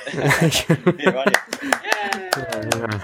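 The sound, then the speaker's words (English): A short burst of applause, sharp scattered claps sounding over voices that cheer or talk throughout, lasting about three seconds at a fairly steady level. “Got one of those applause buttons or something you can press?”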